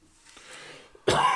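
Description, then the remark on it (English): A single loud, harsh cough bursts right up close to the microphone after a second of quiet room noise, cutting off abruptly. “I forgot where the mute button is, so I'm just going to cough in the microphone at full speed.”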